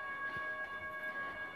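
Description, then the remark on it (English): A railway level crossing warning alarm at the Kensington train station sounds steadily, a loud sustained electronic tone with bright ringing overtones, heard outdoors with no one speaking. “Oh no, this dreaded sound that I hate of a train crossing.”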